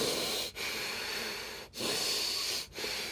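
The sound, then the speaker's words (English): Heavy breathing through the nose from someone congested with allergies, with long hissing, slightly congested breaths broken by three brief pauses. No one speaks. “I was breathing very heavily through my nose, but I just sound this way, and I like to record first thing in the morning, and this is how I sound.”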